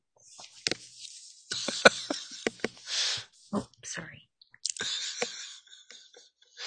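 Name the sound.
sneeze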